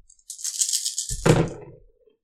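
Dice rattle briskly in a cupped hand for about a second, a bright clicking shake, then spill onto a table with a louder clattering tumble that quickly settles. No one speaks.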